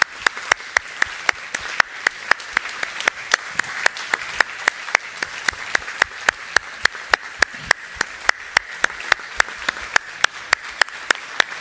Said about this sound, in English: We're going to ask the kids to come on down the aisle as they come down the aisle. And before we pray for them before they go back to school, would you stand up and let's just applaud these kids and let them know how much we love them.